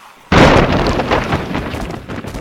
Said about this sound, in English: The door shatters in its frame.